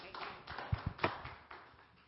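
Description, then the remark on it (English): A church audience claps hands in praise to God: a loose, scattered patter of claps with a few sharper ones standing out, fairly quiet, fading off toward the end. “Let's give God a hand clap of praise.”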